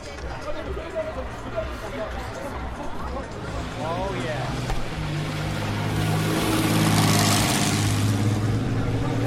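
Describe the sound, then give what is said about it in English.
A six-cylinder vintage Sunbeam Indianapolis racing car, driven by Julian Mazoub, roars up a hill, growing louder as it approaches, its deep revving note rising through the gears over a murmuring crowd of spectators. “Litre six-cylinder Sunbeam Indianapolis, and that was being driven properly going up that hill.”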